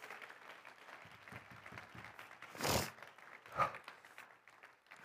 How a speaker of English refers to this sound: How many want to please God today? How many want to please him today? Would you just clap your hands unto the Lord?